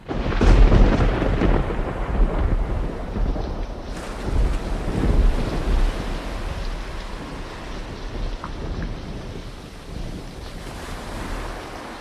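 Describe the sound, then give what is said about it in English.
Rough sea waves crash and surge continuously around a sailing ship while a strong gale roars across the microphone, loud, with deep rumbling and no voices. “Every hand was either pumping water out below deck or on deck, stopping the sails from being ripped away from the masts as we tried to get every modicum of momentum from the gale that assailed us.”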